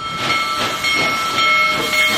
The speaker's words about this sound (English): It's something railroad enthusiasts believe they might never see again. One of the biggest steam locomotives ever built, back on the tracks, rumbling west under its own steam.